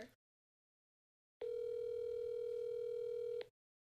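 A single steady electronic ringback tone from an outgoing phone call on speakerphone sounds for about two seconds, then cuts off into silence. No one speaks.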